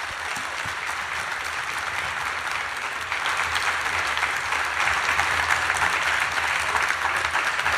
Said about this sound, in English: Okay, ladies and gentlemen, would you please give a big round of applause for our fantastic guest, Miriam O Callaghan.